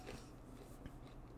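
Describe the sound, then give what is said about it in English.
Someone chewing pizza, with soft, moist mouth sounds and a faint crunch of crust. Quiet, steady, with no talking. “And you guys are hearing me eat it.”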